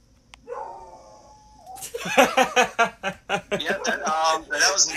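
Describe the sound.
A person mimics a dog, opening with a thin, drawn-out howling whine, then launching into a rapid string of loud yapping barks in an uneven rhythm.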